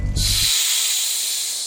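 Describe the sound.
A sustained, loud hiss like a snake's, steady, lasting over a second after a brief low rumble at the start; no voices.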